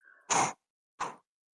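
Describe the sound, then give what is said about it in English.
Two loud, breathy gasps, a longer one followed by a shorter one after a brief pause, as a woman pants hard to catch her breath after a chase. No talking. “She's like breathing hard.”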